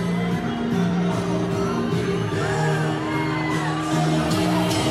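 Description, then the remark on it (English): A loud crowd cheers and whoops continuously over a song, with sustained musical tones and rising voices layered into a dense, steady roar throughout. “The crowd still loves the song.”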